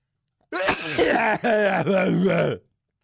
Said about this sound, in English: I start thinking about Pam Grier, and I can't stop sneezing.